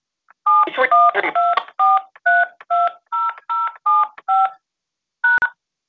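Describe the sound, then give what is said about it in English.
Touch-tone phone keypad dialing: a quick, even run of about ten loud electronic beeps, each a different pitch pair, then a brief pause and one final tone. “Access code or phone number you have dialed is incorrect.”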